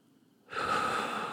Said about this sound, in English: I will do that breathing prayer sometimes for 20 minutes as a way of recentering myself, as a way of reminding myself what is ultimately true, what really ultimately matters